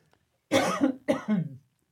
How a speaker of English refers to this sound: Hold on one second. I have to cough.